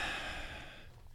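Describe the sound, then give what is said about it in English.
A heavy, breathy exhale from a person getting ready to do a coffee bong, a rush of airy noise that gradually fades over about a second, with no talking. “I love how heavily you're breathing.”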